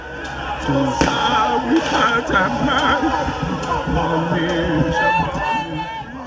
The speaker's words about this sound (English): The army denies this, but there's a video that literally shows men in military fatigue shooting into the crowd. You can hear in this video, protesters kept singing the national anthem, even as they were being shot at.